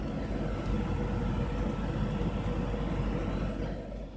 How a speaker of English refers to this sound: We're about to get hit by a thunderstorm.